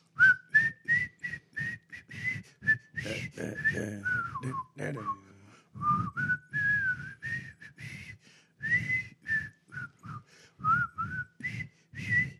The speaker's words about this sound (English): That's the only way to learn how to whistle properly.